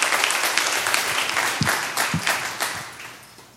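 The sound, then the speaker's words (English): An audience at Mosaic Church breaks into applause for God, many hands clapping together in a dense, steady roar that gradually thins and fades toward the end. “Let's give God a great clap if we can.”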